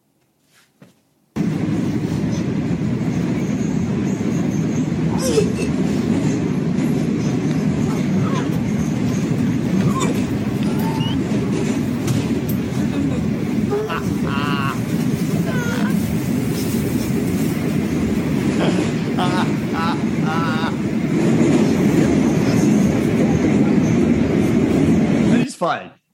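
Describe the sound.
A train carriage rumbles steadily along the tracks in a loud, continuous low roar, with a few brief metallic squeals partway through and murmured voices underneath.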